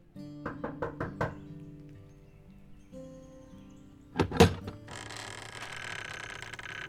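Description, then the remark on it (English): A woman raps five quick, evenly spaced knocks on a house door in Collinsville, Illinois, followed by a short pause, then a louder thud and a creak as an elderly woman opens the door onto a hissing ambience. “When she knocked, an elderly woman opened the door.”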